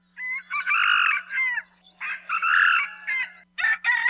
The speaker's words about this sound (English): Moa, or red jungle fowl, were the first birds introduced to Hawaii by humans, as they were brought by Polynesian voyagers to the Hawaiian Islands close to 1,000 years ago.